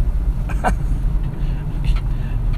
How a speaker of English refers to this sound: I keep a lot of stuff in my car. For example, I got a hanger back there that's kind of bumping right now.